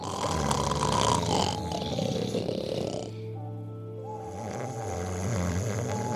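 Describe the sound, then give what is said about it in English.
A person imitates snoring with a loud, rough rasping drone for about three seconds, then the sound settles into a steadier, smoother hum. “Start to snore”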